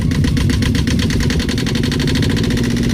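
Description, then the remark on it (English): A boat motor runs loud, a steady rhythmic chugging with a buzzy rattle that holds at an even level throughout, with no voices. “That was supposed to be a boat motor passing by, but I don't know what sound effect.”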